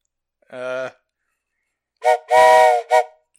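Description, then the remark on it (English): A man vocally imitates a train arriving at a station: a short whistle-like hoot, a pause, then a longer loud hissing toot flanked by two brief blasts. “how about you give us your best attempt at what a train arriving at station sound would be?”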